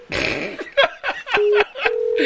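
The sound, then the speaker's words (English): A quick series of electronic telephone dialing tones as a phone number is dialed, short bursts in rapid succession, followed by steady held tones like a call connecting and ringing over Skype, fairly loud with no talking. “And basically, I got to dial her phone number.”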